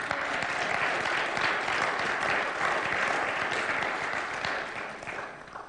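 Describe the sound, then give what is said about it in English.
An audience at a worship service breaks into sustained applause for the tech team, a dense, steady patter of many clapping hands that holds strong for several seconds before tapering off slightly at the end. “If you want to applaud the tech team, you can.”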